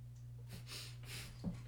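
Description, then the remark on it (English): Soft, snuffly snoring: a few airy, rasping breaths in quick succession, ending with a short snort, all over a steady low hum and with no talking. “She's kind of snoring.”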